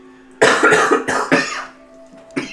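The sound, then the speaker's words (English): A series of harsh coughs comes in quick bursts, several in a row, then a pause before one last cough, over a faint steady background hum. “Sorry, just call and response with coughing.”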